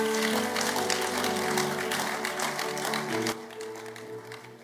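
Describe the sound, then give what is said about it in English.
A church audience claps loudly and steadily for about three seconds as a clap offering during a sermon, over sustained keyboard or organ chords, then the applause thins out while the music carries on more quietly. “Give the Lord a good clap offering.”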